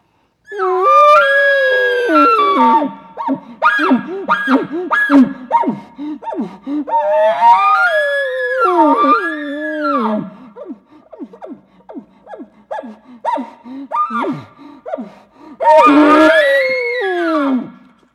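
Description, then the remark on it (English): Bull elk bugle repeatedly, calling to try to draw a cow out of the herd: three long, loud, high whistling calls that rise and fall in pitch, separated by bursts of shorter squeals and chirps, with no talking. “You'll hear these bulls going nuts, and they're staying back, and they're trying to call the cow out of there.”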